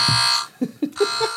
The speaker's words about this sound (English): new buzzers for Jeopardy.